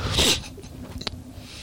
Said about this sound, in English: Fuck, I gotta sneeze. Corona.